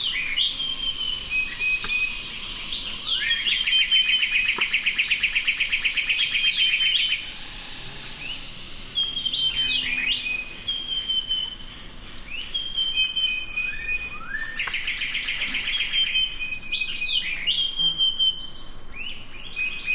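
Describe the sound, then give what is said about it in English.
A dense dawn chorus in the Everglades at Big Cypress Preserve, Florida: overlapping birdsong with rapid trills, chirps and whistles, over a steady hum of insects and amphibians such as frogs, continuous and lively with no voices. “Lang Elliott and Ted Mack recorded this dawn chorus of birds, insects, and amphibians at Florida's Big Cypress Preserve.”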